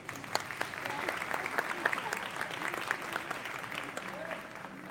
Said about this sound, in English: ceremony with a big round of applause.